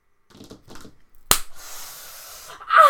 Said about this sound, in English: Stop it. I'm gonna slap you on the leg.